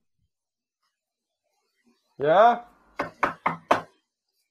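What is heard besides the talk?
knocking on a door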